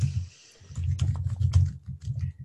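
Someone types on a computer keyboard in a quick, irregular patter of close, soft clicks, with a low rumbling hum underneath and no one speaking.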